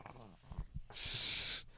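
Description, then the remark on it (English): A dog named Lola lets out a low, rumbling growl, then a sharp breathy huff through its nose, with no one talking over it; she growls when Facebook is mentioned. “No, she starts growling when you mention Facebook.”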